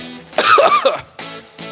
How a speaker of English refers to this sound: Welcome back for another week of coughing.